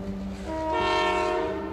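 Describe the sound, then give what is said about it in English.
A steam train pulls in with a rumbling chug, then lets out a loud, sustained whistle that swells and holds steady near the end, prominent with no voices. “I present to you my number one train, Thomas. Wonderful, he is here.”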